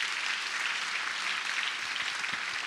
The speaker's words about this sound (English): Somebody give the Lord a clap offering of praise, please.